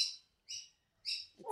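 A myna bird calls in three short, bright whistling bursts with brief pauses between them, followed by the start of a lower sound at the end.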